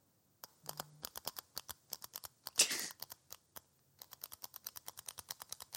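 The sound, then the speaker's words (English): A spatula rapped against a frying pan in a kitchen as a makeshift beat: quick, sharp, light clacks in an uneven rhythm, a brief scraping rasp midway, a short pause, then a steadier run of taps. “You need a little music, and here's a little something I cooked up in the kitchen with my frying pan and spatula.”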